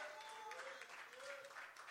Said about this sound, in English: God, a hand clap of praise. Somebody tell him thank you. Somebody give him glory.